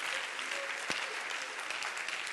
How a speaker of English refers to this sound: Clap your hands and rejoice in that, because that's good stuff.